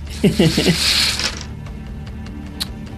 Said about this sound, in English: This would be a wits plus awareness roll to see inside the house. Wits plus awareness. Here we go. Oh, yeah. Here we go. This is good because I got a four dice roll finally